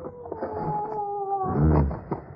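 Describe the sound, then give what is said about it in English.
A dog howls in a long, wavering tone that slides slightly downward, then breaks into a louder, lower mournful cry near the end, alone without speech. “Tell that dog to shut up, will you?”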